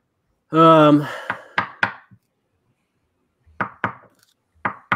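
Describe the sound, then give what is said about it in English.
A short voiced tone is followed by sharp knocking on a door, in clusters of three or four raps, then a pause and another round of knocks, fairly loud. “Hey, go answer the door. Somebody's there.”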